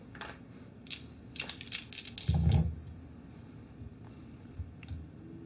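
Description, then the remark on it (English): Dice are rolled for a charisma and domination check, rattling and clattering in a quick cluster of sharp clicks, ending in a heavier tumbling knock, then a few scattered taps. Moderately loud, with no talking. “If he's actively trying to resist, then I have a die roll.”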